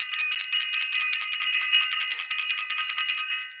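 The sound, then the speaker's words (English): A bell rings continuously for a few seconds, a bright, high, metallic jangle with rapid fluttering strokes at a steady, fairly loud level. No voices are heard. “So I want to ring the bell.”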